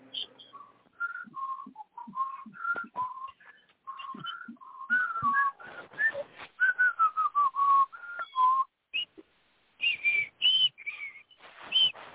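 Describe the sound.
Someone whistles the Jeopardy theme tune while waiting for quiz responses, a bright melodic line of short pitched notes in a steady rhythm, with a few soft breaths and faint background noise between phrases.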